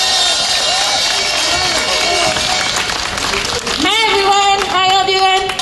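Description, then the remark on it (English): A crowd applauds loudly and steadily, dense clapping filling the whole stretch, with scattered cheers and whoops rising above it toward the end, welcoming a speaker from the Party for Socialism and Liberation. “Give Katie a round of applause as she comes.”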